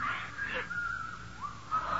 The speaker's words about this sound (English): There's that whistling again.